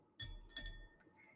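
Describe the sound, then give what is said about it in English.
A glass of wine clinks twice in quick succession, bright, with a thin ringing tone lingering briefly before fading into quiet. No one speaks. “And next to me, I have a glass of wine.”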